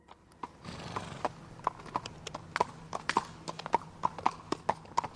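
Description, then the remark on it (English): Hooves clip-clop at a steady walking pace as a hoofed figure approaches, a long run of crisp, evenly spaced knocks on a hard surface, moderately loud, with a low rumble of background beneath. “His footsteps sounded different, and soon the hooves came into view.”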